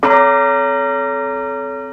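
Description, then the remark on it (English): A single large tower bell in Hingham, one of a set of bells of different sizes tuned to different notes in a scale, is struck once. Its rich metallic tone rings out clearly and slowly fades over the next two seconds, with no voices. “They're all different sizes so that they can strike different toned notes in a scale.”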